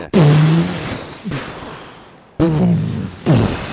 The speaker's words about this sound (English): That's a fart sound.